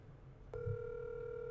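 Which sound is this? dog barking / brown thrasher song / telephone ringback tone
telephone ringback tone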